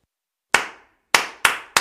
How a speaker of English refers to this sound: All you need to do is clap back the rhythm of the words that I say. So if I say, space is the place, you'll clap.